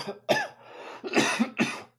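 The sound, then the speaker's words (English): A cluster of four harsh, wet, fairly loud coughs in quick succession, caused by sinus drainage, with a brief throat-clearing rasp between the bursts and no talking. “Chain smoker, excuse me, got sinus drainage and it makes me cough, but I'm healed by the stripes of Jesus.”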